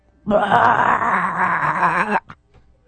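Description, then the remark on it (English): A person imitates a crane's call with one loud, drawn-out, warbling cry lasting about two seconds. Its wavering pitch gives it a moaning, wailing quality, and a brief breathy tail follows. “So if they don't go quack, quack, they kind of go.”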